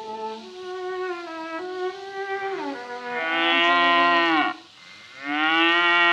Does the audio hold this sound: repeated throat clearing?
no